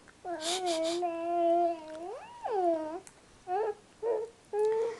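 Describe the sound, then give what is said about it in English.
A toddler doll named Brooke Louise, made as a little girl of about 9 or 10 months, babbles and gurgles in baby-like tones, starting with a long wavering coo and a rising squeal, then a few short babbling bursts. It's clear, with no talking. “So, who is that you can hear gurgling away in the background? This is a toddler doll, toddler little girl, not as big as Alfie.”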